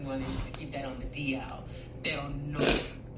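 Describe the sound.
A person talks in a steady, low voice during a live video stream, then gives a short, breathy sniffle, not from illness, a quick rush of air through the nose that stands out briefly before the talking resumes.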